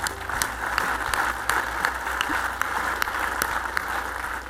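A crowd applauds steadily at the WQA Convention, a dense wash of many hands clapping at once with a few sharper individual claps standing out, sustained at an even level throughout with no voices.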